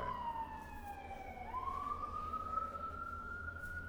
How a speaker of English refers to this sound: Sirens again.